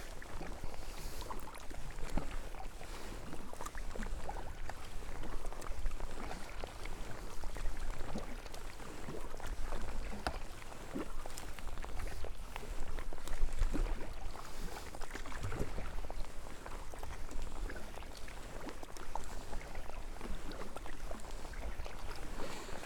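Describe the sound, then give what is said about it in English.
Kayak paddling through sea water: a steady wash of splashing and lapping water with repeated soft paddle strokes and a low rumble of wind underneath, and no voices. “In the way I'm paddling, there's a renewed energy, a renewed zest for the journey.”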